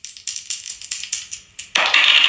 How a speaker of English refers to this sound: Can we roll these dice and go and get started for the night? Yeah. Let's roll these dice.